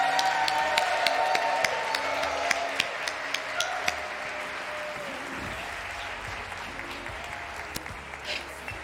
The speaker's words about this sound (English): Could we give her a round of applause?